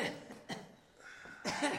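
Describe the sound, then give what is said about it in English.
A person coughs in a ragged series of harsh, breathy bursts, a couple of quick ones followed by a longer, rougher fit, with no talking. “How long have you had this cough?”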